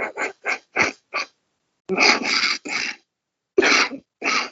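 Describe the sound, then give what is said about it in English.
A loud fit of coughing: a quick run of five short hacking coughs, a pause, then three heavier, rougher coughs and two more after another gap. No talking. “Now you started me coughing.”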